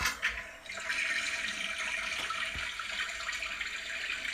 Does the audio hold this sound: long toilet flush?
yes